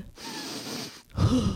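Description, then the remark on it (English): A long, noisy inhale through the nose as someone sniffs a person's feet, then a short pause and a second forceful, breathy sniff that is louder and lower, with no talking. “And I got the good sniff.”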